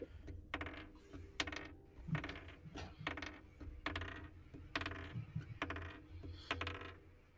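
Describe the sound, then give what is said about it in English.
Dice clatter and tumble across a hard tabletop in a quick series of sharp clicks and rattles, steady for several seconds, with no voices; a player rolls them during a tabletop role-playing game. “your dice are on fire today.”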